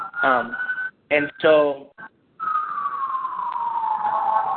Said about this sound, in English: So I'm going to let that siren pass by. Yeah, I'm so sorry. I'm in New York City today. And this happens all the time, and there's just no way to block it out. Apparently, there are at least four fire trucks going by us right now.